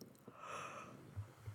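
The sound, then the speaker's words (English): A single soft, drawn-out yawn with a breathy inhale, quiet, followed by faint breathing and no talking. “As I'm doing this, I'm automatically yawning, and that's okay.”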